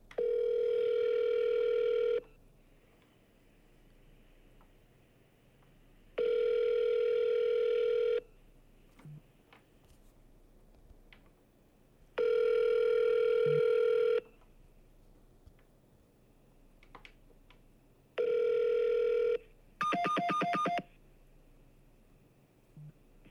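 A steady telephone tone sounds in four long bursts separated by pauses, followed by a quick run of dialing beeps near the end; clear and fairly loud, with no talking.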